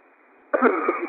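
A single harsh, raspy cough bursts out loud after a moment of faint background hiss, trailing off rough and throaty, as a person is commanded during a deliverance prayer to cough out a spirit.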